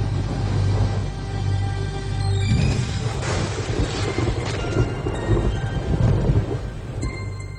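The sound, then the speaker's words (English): A sharp crack of thunder from a lightning strike, a direct hit of more than 200,000 volts on a 38-year-old man pulling over his motorcycle in the rain, bursts out partway through, then rolls into a heavy, sustained rumble over steady rain. There are no voices. “It was a direct hit. More than 200,000 volts of electricity.”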